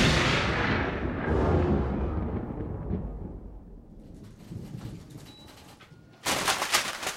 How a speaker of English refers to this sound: Ah! Ace, oh my god! Chief, call an ambulance! Ace has been struck by lightning!